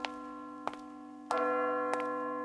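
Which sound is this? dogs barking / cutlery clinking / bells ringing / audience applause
bells ringing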